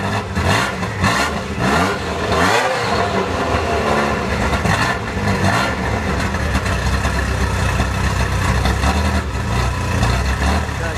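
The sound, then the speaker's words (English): A Ferrari F40 sports car engine revs loudly and continuously, its pitch swelling and dropping in repeated surges over a gritty mechanical roar, with no voices. “If you've ever listened to it, just Google Ferrari F40 engine sounds.”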